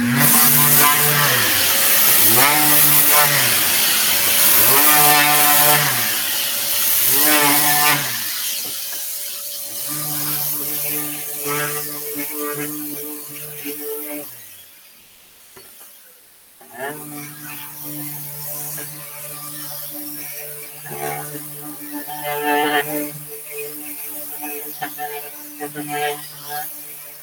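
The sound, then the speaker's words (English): A power sander whirs loudly and steadily, its pads working across the panels of two cabinet doors, its motor pitch shifting, dropping briefly mid-way before starting up again with scraping texture. “I'll just run you through how we sand these two.”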